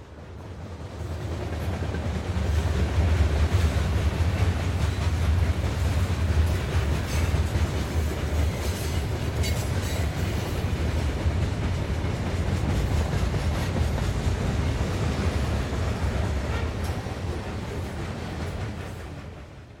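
A train rumbles and clatters steadily along the rails, loud, a dense continuous roar with rhythmic clacking that swells in at the start and eases off at the end, with no voices.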